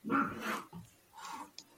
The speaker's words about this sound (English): the cat's growling at my. It's probably growling at Rob's beard.